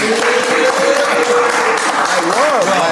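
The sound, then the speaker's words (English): A steady burst of applause from several people, dense and fairly loud throughout, with a faint voice-like tone rising and wavering underneath. “I think we should clap for that.”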